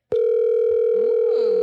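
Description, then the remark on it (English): A loud, steady telephone tone starts abruptly and holds unbroken, like an outgoing call ringing on the line, with faint background sounds underneath and no talking. “It's ringing. Really loud.”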